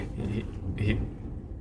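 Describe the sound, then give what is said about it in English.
A deep, continuous rumble of thunder rolls low and heavy for a second and a half, swelling briefly midway, with some muffled voice-like sounds mixed in. “That thunder. That's going thunder.”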